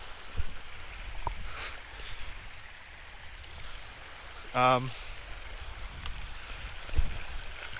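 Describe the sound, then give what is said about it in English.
Steady rushing and sloshing water as someone moves straight through it at the Kennedy Valley, with occasional louder splashes and a brief high squeak midway; no clear speech. “Oh, straight through the water.”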